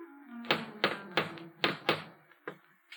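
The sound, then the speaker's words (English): A run of about seven sharp, fairly loud knocks on a wooden door in an uneven rhythm over a faint steady background hum: Professor McGargle raps smartly on the door of Mrs. Tubbs' house in the early evening. “Tubbs' comfortable house, he adjusts his purple brocaded vest, flourishes a tattered handkerchief at his dusty shoes, and raps smartly on the door.”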